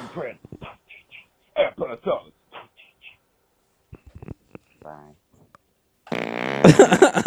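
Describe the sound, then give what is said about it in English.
A loud, buzzy, robotic-sounding fart bursts out near the end, following a stretch of choppy, garbled voice-like sounds and short pauses. “He could have farted. It's a very robotic fart.”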